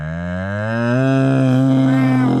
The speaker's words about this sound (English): Bunch of mooing cows.